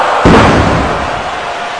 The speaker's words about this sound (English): slammed him with an inverted face-first choke slam into the glass!